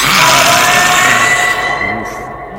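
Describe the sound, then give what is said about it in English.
A voice imitates a banshee's scream: one loud, shrill, sustained wail with a raspy edge that holds steady, then slowly fades over a couple of seconds. “And you are left with this one banshee looks and just screams again.”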